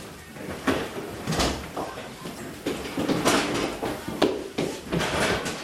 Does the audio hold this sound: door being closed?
yes